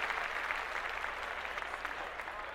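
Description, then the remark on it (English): Steady applause from many hands fills the whole stretch, a dense, even patter of claps with no breaks, moderately loud, with no voices on top; clapping for some kids. “and I'm gonna clap that up one more time for these kids.”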